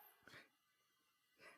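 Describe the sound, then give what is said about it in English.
A dog gives two soft, mournful woofs about a second apart, faint against a quiet background, with a breathy, whimpering quality. “It has such a sad woof when you take it out.”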